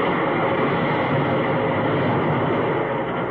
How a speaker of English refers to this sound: I see the train leave right on the edge.